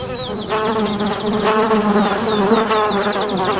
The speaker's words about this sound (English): the sky filled with what seemed to be an army of black and yellow creatures. Bumblebee drones. Their wings made the buzzing sound.